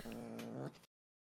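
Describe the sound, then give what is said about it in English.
A single drawn-out meow from a domestic cat, fairly loud, holding a steady tone before dipping slightly and cutting off abruptly, with no other sounds around it. “Don't turn your cat into a racist.”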